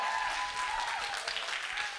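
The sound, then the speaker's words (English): A church audience applauds steadily, clapping for Jesus: a dense wash of many hands clapping at once, sustained and fairly loud throughout with no break. “I'm saying clap for Jesus.”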